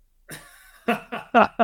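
human body sound, throat clearing cough

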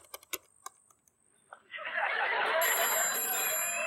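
household object, telephone ringing

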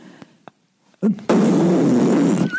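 human body sound, fart

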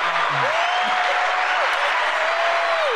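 crowd, applause

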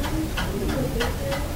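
household object, clock ticking

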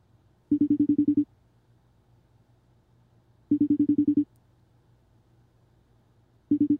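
signal or alarm, telephone ringing

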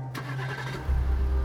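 vehicle, car engine starting

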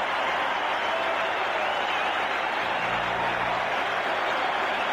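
crowd, arena crowd applauding

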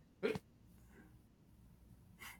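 human body sound, sneeze

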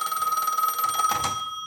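household object, telephone ringing

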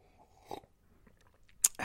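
food or drink, slurping coffee

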